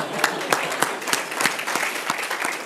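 A short round of applause from a small group, with steady clapping and a few sharper, louder claps standing out. It holds at an even level throughout and there is no talking.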